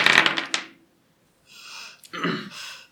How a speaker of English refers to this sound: But you now need to make a stamina roll, please. So it's the number of dice.